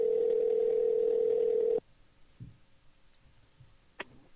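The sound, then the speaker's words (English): A phone line ringing on an outgoing call to a game designer: one steady, buzzy ring tone lasts almost two seconds, then cuts off into near silence with a few faint clicks and a short sharp tick. “And it is going to be ringing.”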